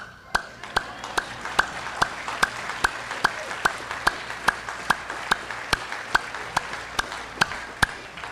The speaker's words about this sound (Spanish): En una iglesia que yo predique esto, nadie va a aplaudir. En esta sí.